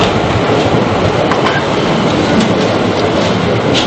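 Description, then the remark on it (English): A U5 line U-Bahn train, built like a tram, rumbles steadily along the tracks with a dense, constant roar and faint rhythmic clatter, heard from inside the train with no one speaking. “So we've just got in the U5, and the U5 is a strange sort of U-Bahn. It's built like a tram, and the reason why becomes obvious in a minute, because we're going to go up a ramp and out into the road.”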